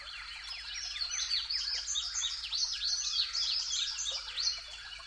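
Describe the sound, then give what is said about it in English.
A dense chorus of many birds singing at once on a spring morning at sunrise, after the spring migration, with overlapping chirps, trills and whistles filling the air continuously, faint low background hum and no voices. “We're listening to spring birdsong, where everybody's pretty much setting up shop for the season.”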